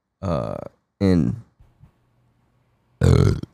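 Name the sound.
burp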